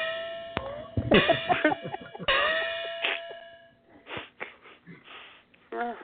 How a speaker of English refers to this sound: That's about the third time we've played that, and the gong always gets me. I laugh every time.